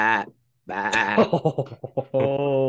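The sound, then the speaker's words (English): A person imitates a goat: a short nasal cry, a pause, then a longer wavering bleat with a rapid quaver that ends in a steady held note. Loud and alone. “let's hear your best GOAT impression.”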